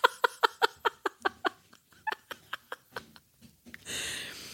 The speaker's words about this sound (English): It's the dog and the cat playing outside.